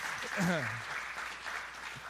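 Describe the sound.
An audience claps steadily, a dense wash of many hands at moderate volume, with a short spoken voice rising briefly over the applause near the start.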